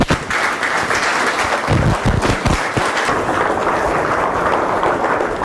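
A crowd breaks into loud, sustained applause for the director and co-founder of the Nick Foundation, dense clapping filling the whole stretch with a few sharper bursts of claps standing out early on.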